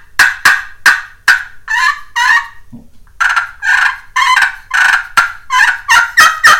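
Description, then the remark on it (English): A turkey pot call played with a striker gives a quick series of sharp, raspy yelps and clucks, loud, in uneven bursts with a short pause midway; no one talks. “I'll yelp and cluck on them so you can see hear the difference.”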